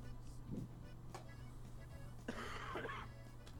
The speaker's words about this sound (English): Bless you. That was a cough, but thanks.